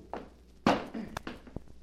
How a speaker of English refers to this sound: After Eddie had tried for an hour to open the safe, where Kitty said George kept all his money, he was obliged to use force. Kitty found him a heavy hammer, and he went to work with that.